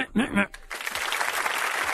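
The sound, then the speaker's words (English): A brief voice at the start gives way to a steady wash of clapping applause, dense and sustained, filling the rest of the moment at moderate loudness. “Stop the applause.”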